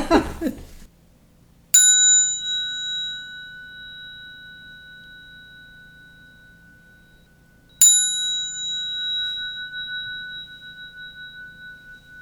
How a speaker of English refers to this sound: It reminds me of who I am and what I'm doing, and what I'm doing here, reaching for this artwork and information. It's a sacred relationship that I have. Mm, wow. Would you like to hear the bell?